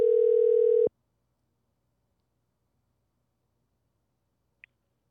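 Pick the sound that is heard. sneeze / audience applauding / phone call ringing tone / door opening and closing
phone call ringing tone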